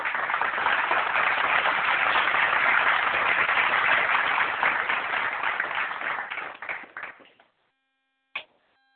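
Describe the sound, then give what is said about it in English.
Audience applause after a love poem is recited, a dense burst of many hands clapping that holds steady for several seconds, then thins into scattered claps and fades out, followed by a brief sharp click. “Okay, so baby got some applause.”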